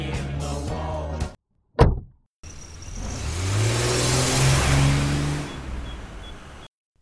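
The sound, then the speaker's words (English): A car engine runs, a door thumps shut, then the engine revs up loudly and the car, driven by a teacher, pulls away, the roar swelling steadily before cutting off. No one speaks. “jumped into the car driven by one of the teachers.”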